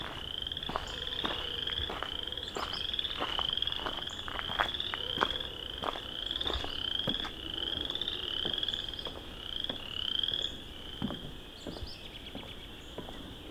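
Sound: chorus frogs calling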